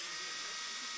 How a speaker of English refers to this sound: Now, I love this because I can pull this thing out, this power tool out, and I can zip, zip, zip, zip, zip, and I can zip it really, really fast.